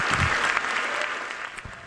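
Sustained standing ovation from Congress for Zelensky, dense and steady clapping at a strong level throughout, with no individual voices standing out.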